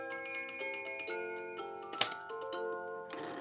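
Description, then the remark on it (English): A mechanical clock ticks steadily at roughly two beats per second over sustained, melodic musical tones, with one sharper, louder click midway through. No one speaks. “Yeah, it's a living mechanism. I've always said that it brings your house to life, regardless.”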